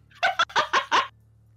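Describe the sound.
A person imitates a distressed bird with five quick, loud, harsh squawks in a rapid burst over a faint steady hum, with no other talking.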